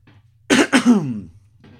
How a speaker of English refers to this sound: I really need to invest in that cough button, hey?